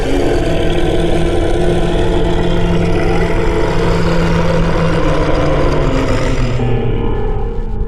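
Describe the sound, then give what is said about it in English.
A monster in a small closet-like room shakes its head and lets out a tremendous roar: one loud, sustained, deep rumbling growl with a gritty, grinding texture that holds for about eight seconds before its harsh upper edge fades away. No one speaks. “And then it lets out this tremendous roar.”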